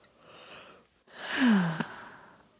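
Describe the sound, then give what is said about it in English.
A long, drawn-out yawn, swelling into a breathy rise with a falling groan at the end, preceded by a softer inhaled breath. “Oh, I'm yawning.”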